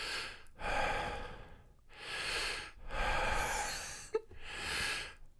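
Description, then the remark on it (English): A voice imitates heavy, rhythmic breathing heard from someone in a restroom stall, like someone exercising by doing curls or leg press: about five loud, forceful breaths in and out, evenly paced, with no talking. “I just heard this rhythmic breathing that was really unsettling”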